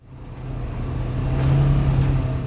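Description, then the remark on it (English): A side-by-side off-road vehicle accelerates as its gas pedal is slammed down in Hooper Bay, Alaska, driving through mist and spray from crashing Bering Sea waves; its engine drones in a low, steady hum that climbs in pitch and grows louder over a couple of seconds. No voices are heard. “slams down the gas pedal of his side-by-side off-road vehicle, and he drives through mist and spray from crashing Bering Sea waves.”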